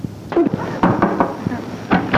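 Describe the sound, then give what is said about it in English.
Several sharp, solid knocks at irregular intervals, followed by the clunk and rattle of a door being opened at Jon Pertwee's house, over a low background hum. “Come in, come in, shut the door, it's drunk.”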